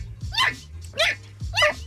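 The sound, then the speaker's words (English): A female puppy barks three times in a steady rhythm, each bark sharp, about half a second apart, over a low background hum. “I don't think we need that, puppy girl. Not a great sound, I'll tell you that.”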